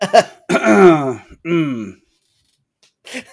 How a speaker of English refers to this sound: I feel a cough coming on.